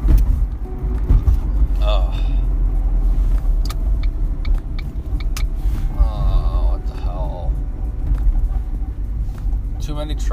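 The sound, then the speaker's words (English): Heavy trucks rumble past, a loud, continuous low roar of engines and tires that swells and lingers, with brief squeals and clanks rising above the traffic noise. “Too many trucks.”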